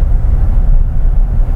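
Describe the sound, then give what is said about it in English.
A gas pickup truck engine strains uphill in fifth gear, holding about 3,000 to 3,300 RPM, with a loud, steady low drone and rumble that holds constant throughout, with no voices over it. “I mean, you can hear this thing working for it.”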